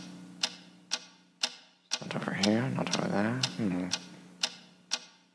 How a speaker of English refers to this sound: What is that mysterious ticking noise?